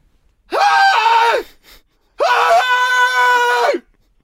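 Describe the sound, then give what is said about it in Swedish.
A voice imitates a man screaming in two loud, drawn-out bursts, each rising sharply and then falling away, with a brief pause between them. “Det är ju samma sak som att han bara börjar skrika.”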